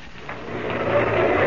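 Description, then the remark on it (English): Maxton's car races by on a road after a curve, with a rough, steady engine roar that swells louder over a second and a half. No voices, just the mechanical rush of the motor. “Maxton's car whipped by.”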